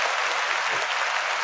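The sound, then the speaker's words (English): A dense burst of applause, many hands clapping at once in a steady, hissing wash of sound that stays even and fairly loud for its short length, with no voices standing out. “Oh, Miss Debbie, I do want to send her a shout out and a round of applause.”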